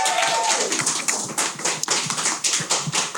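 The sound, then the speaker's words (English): An audience at the Eden Gathering claps in a round of applause, a dense, steady patter of many hands that stays loud and continuous for about three seconds with no break. “So can we have a round of applause for them, please?”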